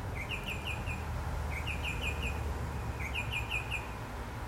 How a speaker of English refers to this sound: God, I love listening to the bird songs. And yet the bird song is universal. The birds are different. But I love that everywhere around the world where there are birds, they sing before the sun comes up.